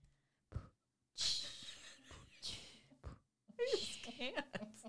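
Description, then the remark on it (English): Breathy beatboxing: sharp kick-like puffs alternate with long hissing inhales and exhales in a loose rhythm, ending with a voiced, wheezy breath. “Favorite one, though, is the breathing one. Which one is that one? The one where they're doing the beatbox?”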